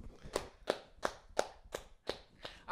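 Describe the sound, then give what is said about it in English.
Slow, steady applause from a single pair of hands: about seven sharp, evenly spaced claps, each a crisp snap, with no voices over them. “Round of applause.”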